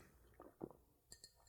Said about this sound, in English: The fact that I could hear that swallow just in my eardrum.